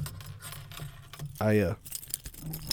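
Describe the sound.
Keys jangle and clink as they are handed over, a quick burst of bright metallic rattling, with a short voiced sound briefly cutting in partway through.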